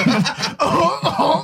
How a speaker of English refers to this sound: See, it's not gag reflexes. You're just coughing.